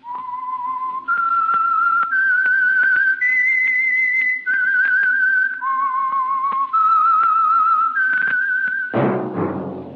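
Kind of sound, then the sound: signal or alarm, whistled signature theme melody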